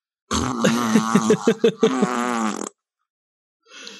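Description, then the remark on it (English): A loud, drawn-out fart noise blown with the mouth, a buzzing raspberry lasting over two seconds with a few sputtering pulses in the middle, followed by a brief faint rustle. “Legally speaking, the fart noise has to be made after that statement.”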